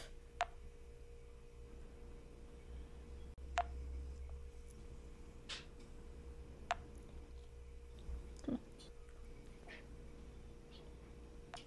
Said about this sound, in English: That was my watch. Oh. I thought she was about to start talking and then it kept beeping. I was like, what? No, that was my Apple Watch.